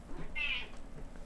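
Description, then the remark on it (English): A single short, high-pitched cat screech, shrill and piercing, lasting about a quarter second over a low background hum, with no one talking. “maybe the E is for the three E's in the word screeching, which describes your cat.”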